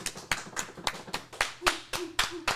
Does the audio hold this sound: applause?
yes